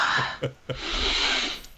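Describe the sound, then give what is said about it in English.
Nasal sniffing at a hand after a handshake: a couple of quick, sharp sniffs followed by one longer, drawn-in sniff, breathy and fairly loud with no talking. “Were able to show that when you shake hands, you're more likely to touch your face unconsciously afterwards and take a sniff.”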